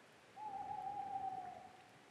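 A single sustained owl hoot, a steady low tone lasting about a second, heard at a neighborhood pond on a cold, crisp December morning near sunrise, against a quiet outdoor background with faint ambient hiss.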